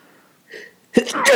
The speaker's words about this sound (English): Sorry. Bless you. I was trying to mute myself before I sneezed. You could see me preparing. I was like, no.